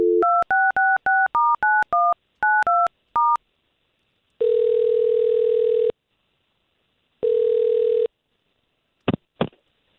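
A rapid series of about eleven touch-tone beeps as a woman's phone number is dialed for a call on a morning radio show, followed by two long, steady ringback tones and a couple of brief clicks, with no voices.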